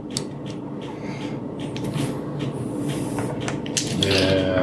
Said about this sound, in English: More dice. There you go. There's some white wolf rolling right there.